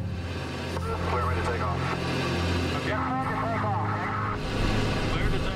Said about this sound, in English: So I hammered the canopy into place, I locked it down, and I started the engines.